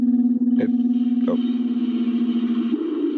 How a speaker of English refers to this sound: It crashed into a lake. That was a meteor.